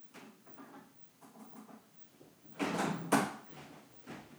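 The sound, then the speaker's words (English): A fridge door swings open with a whooshing rush and shuts with a firm clunk, after a few seconds of soft rustling and handling noises as the fridge and freezer settings are changed. No one speaks. “I only opened one door when I reached in and I changed them both.”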